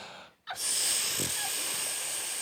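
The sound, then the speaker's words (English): A voice imitates a tea kettle, a long, steady hissing exhale like deep breathing, starting abruptly after a brief silence and holding loud for about two seconds, with no talking. “she turns into a tea kettle.”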